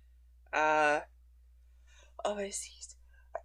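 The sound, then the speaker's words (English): A single loud sneeze with a strong voiced burst, followed a moment later by a short noisy exhale and brief murmured talk. “Bless you. Thank you.”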